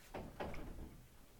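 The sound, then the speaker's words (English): A door is pulled shut, with two quick thuds in succession followed by a low, fading rumble as it settles into the frame. No one speaks. “Let's pull the door close.”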